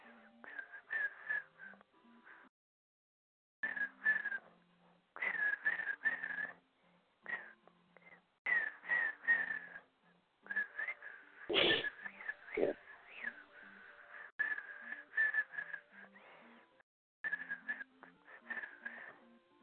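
Someone whistles a wandering tune in short, uneven phrases with brief pauses between them, broken midway by a couple of sharp, breathy bursts.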